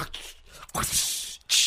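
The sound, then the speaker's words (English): A voice imitates a whip crack, pushing out a long breathy hiss that cuts off, then starts a second hissing burst. It is fairly loud, with no other sounds around it. “Whip crack.”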